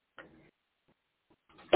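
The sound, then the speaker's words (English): Someone clears their throat before taking a phone call, with a short raspy burst, a brief pause and faint rustles, then a second rougher clearing at the end. Nobody speaks. “Clearing my throat prior to taking the call.”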